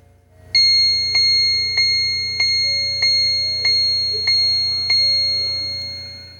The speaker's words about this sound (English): Most of you are familiar with the time and temperature clock. And that's an English clock that sits on my headboard. Let me see if it's 8 o'clock yet. Yeah. Yep, it is. Let me just touch it quickly. The autochron, 8 o'clock.